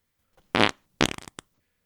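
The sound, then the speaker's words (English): A loud fart: one buzzy sustained blast, then a sputtering second burst that breaks into quick rattling pulses and ends with a small pop. “Just an old man on the couch, just remote control, fart.”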